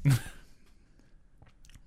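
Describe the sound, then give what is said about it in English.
A brief, breathy slurp as water is sipped from a bottle, followed by a quiet pause and a few faint clicks like swallowing, with no talking. “this is my first time taking a sip of, like, you know, I know it's not exactly, I just call it $3 bottle water”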